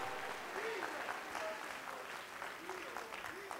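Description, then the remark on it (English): A crowd claps continuously to give praise to the Lord after a prayer, a dense wash of overlapping handclaps, with faint voices calling out underneath. “One more time, clap your hands to the Lord and give him praise.”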